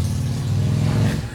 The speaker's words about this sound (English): Recently, motorcycles are pretty loud.